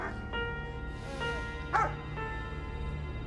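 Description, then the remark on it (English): A dog barks once, sharp, with a softer whimpering yelp before it, all over a steady low background hum and no speech. “Look at that dog.”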